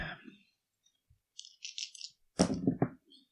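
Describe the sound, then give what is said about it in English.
Dice rattle briefly, then tumble and clatter across a hard surface in a quick burst of clicks, fairly loud, with no one speaking, as an observation roll is made in a tabletop role-playing game. “I'm going to have you make an observation roll to see if you remember who's the better shot.”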